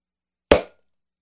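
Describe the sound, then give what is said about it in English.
A single sharp pop as a beer bottle is opened, with a quick airy release that fades within a fraction of a second, surrounded by silence. “Let's fucking pop this motherfucker and let's fucking get with the pour.”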